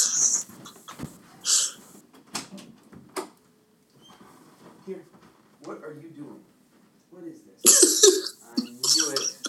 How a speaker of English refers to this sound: I just hear something happening outside my door. I think it's my dog. One second. Okay.